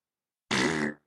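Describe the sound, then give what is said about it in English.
A single loud, buzzy fart noise made by a person with the tongue and lips, a raspberry lasting about half a second after silence, rasping, then fading quickly. “So that's my tongue and my lips together making a fart noise.”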